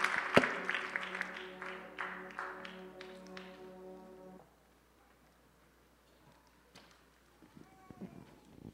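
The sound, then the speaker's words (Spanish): An audience at a Spanish-language church service claps for the Lord over a held organ-like chord for about four seconds, then the clapping and music stop, leaving quiet rustling and a few scattered taps. “Dele ese aplauso al Señor y puede tomar su asiento en esta.”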